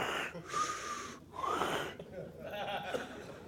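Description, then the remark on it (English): A voice imitates a man's loud, raspy snoring heard while camping, in three drawn-out, wheezing breaths, each rising and falling with short pauses between. It is fairly loud, with no other talking. “He still kept me up snoring.”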